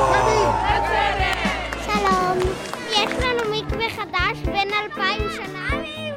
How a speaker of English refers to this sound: 5, 4, 3. Flip the switch. The crowd is like, whoa.